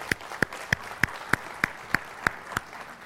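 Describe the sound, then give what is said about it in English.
Applause from a church audience during a morning service comes as steady, evenly spaced claps, about nine sharp hits at a brisk regular beat, fairly soft overall, with no talking. “Let's applaud for that this morning.”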